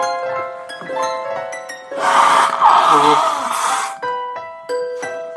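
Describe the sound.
A long, loud, breathy nose blow lasts about two seconds mid-clip, set between stretches of voiced, tonal sound before and after.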